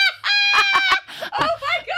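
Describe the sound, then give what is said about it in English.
A voice imitates a duck, letting out a quick run of nasal, honking quacks, fairly loud, with breathy snickering mixed in toward the end. “That sounded exactly like a duck.”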